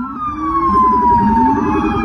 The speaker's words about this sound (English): Screeching convoys of police, like this we captured near Prospect Park, have been frequent around US cities in recent days.